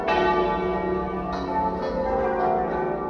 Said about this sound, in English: Earlier today, bells tolled at cathedrals and churches across the country